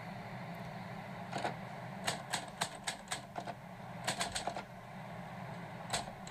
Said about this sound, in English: Just a typewriter.